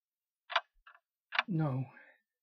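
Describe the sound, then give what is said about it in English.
A few sharp ticking clicks, then a single gliding, sung cuckoo-clock call marking the time, apparently a human voice imitating it. Fairly quiet, with no other sound around it. “He'd almost made it to the door when the time made itself known by ways of their cuckoo clock.”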